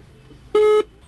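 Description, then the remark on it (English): A single short electronic telephone tone sounds loudly for about a quarter second while a call is placed over a 3G connection from a refugee camp outside Sitwe, then cuts off, leaving only a faint low background hum. “makes another attempt to call the traffickers who are holding his daughter captive. For each dial tone, his breathing gets heavier.”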